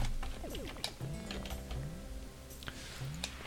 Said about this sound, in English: What are you typing away at? Oh my god, I'm trying to wrap my head around fucking taxes